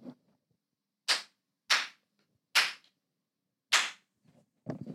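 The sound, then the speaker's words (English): Four sharp, loud hand claps ring out one at a time with uneven gaps between them, each a crisp, bright smack with no talking, followed by a brief rustle at the end. “Those are my spikes in my audio that I'm going to use to get this going.”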